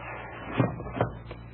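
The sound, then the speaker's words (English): Blackstone slides back a small wooden door in the pedestal of Ajab Jr., a chess-playing automaton, revealing machinery inside, giving a soft scrape and three dull knocks or clunks over a steady low hum, with no voices. “Now, see, I will slide back the door here in the pedestal.”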